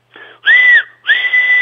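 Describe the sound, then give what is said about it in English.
A train whistle, pulled by the driver at the entrance to the Sough Tunnel on a summer's day, sounds three times in quick succession: a short softer toot, then a louder blast, then a long, steady, piercing blast that keeps going. No voices are heard. “And of course, Bill waved back and pulled the whistle three times.”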